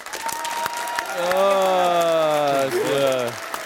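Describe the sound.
An audience claps steadily throughout to vote for Petr Švancara as the one who would win, a dense patter of many hands, while a sustained voice-like cheer rises and slides downward over the applause for a couple of seconds.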